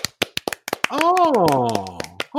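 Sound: hand claps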